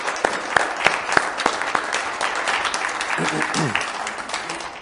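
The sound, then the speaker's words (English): An audience claps steadily as a clap offering to thank God after the worship team's songs, a dense wash of many hands with sharper individual claps standing out, while a few voices murmur and call out underneath. “Anybody want to give God a clap offering here and thank Him?”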